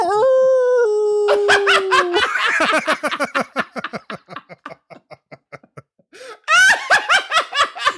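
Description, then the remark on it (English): A person imitates a singer turned into a werewolf, a loud sustained wavering howl lasting about two seconds, which dissolves into rapid rhythmic laughter. After a short pause, another burst of laughter follows. “What if … turned into a werewolf?”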